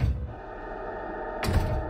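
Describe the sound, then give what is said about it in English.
A low, steady rumble gives way near the end to a sudden, sharp crash as a front door downstairs is smashed open, the broad splintering impact ringing out. “I started towards the stairway but froze as I saw the front door downstairs being smashed open.”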